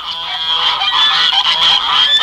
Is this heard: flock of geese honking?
yes